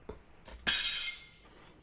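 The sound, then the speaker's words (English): Glass shatters in one sudden, bright crash, its glittering high-pitched fragments ringing out and fading within about a second, after a couple of faint light knocks. No one speaks. “Is that a broken glass? Yeah, plate or a glass, yeah. Very right.”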